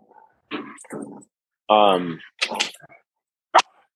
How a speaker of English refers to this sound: Well, that's my dogs. Hold on. Hey, you guys. Hey, let's go play outside.